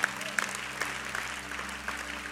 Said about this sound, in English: You can clap, definitely.